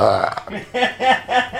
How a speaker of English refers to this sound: Hold on, I got to belch.